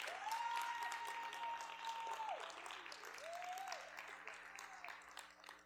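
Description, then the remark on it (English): A church audience applauds steadily throughout, a dense wash of clapping with a sustained tonal hum rising and holding over it, then a shorter second tone partway through. “One more time, just put your hands together.”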